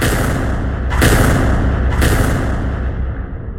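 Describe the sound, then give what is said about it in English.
Mortar shells exploding: two heavy, sharp blasts about a second apart, each cutting through a dense, continuous rumble of low noise that persists throughout. “Then the mortars fell.”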